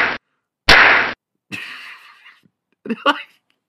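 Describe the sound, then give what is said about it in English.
Two loud, sharp Three Stooges-style cartoon slap effects added to an Unsolved Mysteries reenactment of a man slapping his wife, one very brief and one longer and crashing, followed by short breathy vocal sounds and a quick voiced burst. “He's like, and they added, like, Three Stooges effects to everything.”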